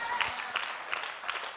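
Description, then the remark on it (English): An audience clapping hands in the morning, a dense wash of applause with a steady rhythmic pulse of stronger claps running through it, fairly soft overall and with no one speaking. “And you, when you amen and you clap your hands, you're receiving something this morning.”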